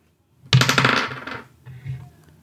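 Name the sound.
six-sided die being rolled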